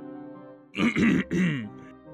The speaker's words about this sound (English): y'all hear a little, like, clearing of the throat kind of below you on lower on the ground.